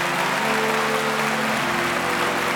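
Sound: audience clapping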